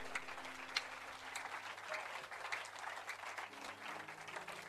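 Many hands clapping together in a dense, steady burst of applause lasting several seconds, with a faint low hum underneath and no voices.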